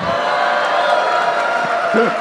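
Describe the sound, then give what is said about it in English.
A large live audience in Boston cheers loudly and continuously, a dense wall of voices with scattered whoops rising out of the roar near the end. “I just wanted to do that just to get that Boston crowd.”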